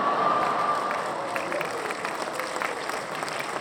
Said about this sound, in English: Yo, give me another applause.